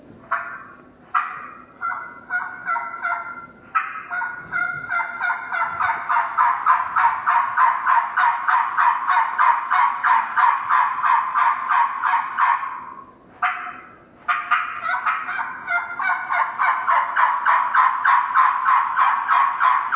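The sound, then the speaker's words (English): A turkey call, the first of several callers, produces a long, loud series of rhythmic yelps, rising into a steady rapid run that pauses briefly, then resumes, imitating an adult hen's assembly yell with no talking. “Caller number one, the adult assembly yell.”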